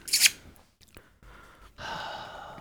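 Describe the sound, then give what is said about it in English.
A female dog snores so hard she blows a snot bubble: a sharp, snorting breath at the start, a brief quiet pause, then a longer raspy, wheezing snore that carries to the end. No one speaks. “Oh, she's a snot bubble from snoring so hard.”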